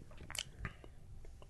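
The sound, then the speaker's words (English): A quiet sip of beer from another person's glass: a short slurping draw followed by a soft swallow and faint mouth sounds, with no talking. “Let me take a sip from his.”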